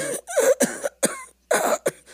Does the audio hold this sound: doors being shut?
no